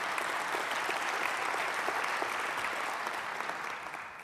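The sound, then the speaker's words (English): Steady applause from an audience, many hands clapping at a constant level before it begins to taper slightly at the end. “You deserve a round of applause.”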